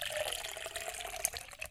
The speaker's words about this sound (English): Guess how many milliliters I'm gonna pee.